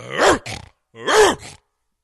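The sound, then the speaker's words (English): A person imitates a big dog with two loud, gruff barks, each a throaty rise and fall followed by a shorter huff, separated by a brief pause. “You should just start making that noise. People will think it's a real dog.”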